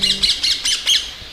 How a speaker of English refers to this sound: That loud caw and a vivid flash of green. Parrots, or parakeets, ring-neck parakeets to be more specific, have invaded the greenery of London.